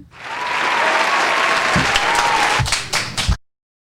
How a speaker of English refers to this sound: Yay. Audience applause.